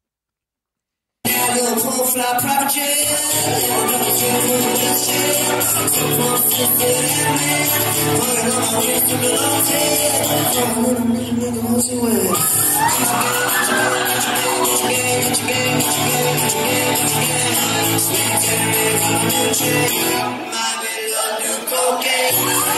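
A live rap song performance plays loudly and continuously, with a dense beat and rapped vocals over a steady wash of cheering crowd noise, ending with a brief dip.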